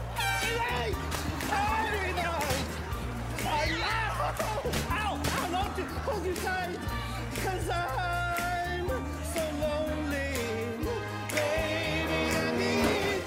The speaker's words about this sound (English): Oh, Steve-O's got an air horn. Here we go.